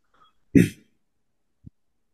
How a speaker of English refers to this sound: Bless you. That was a cough.